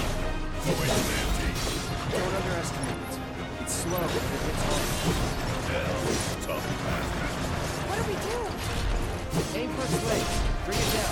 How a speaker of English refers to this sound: Using Cloud, we attack the Crab Warden's two rear legs. Our sword crashes against the iron legs and plates.